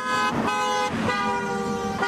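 Cars pass on Little Turtle Way in Columbus with horns honking in long, sustained blasts, loud, a couple of swells in intensity, with no one speaking.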